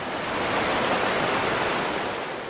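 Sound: ocean waves and surf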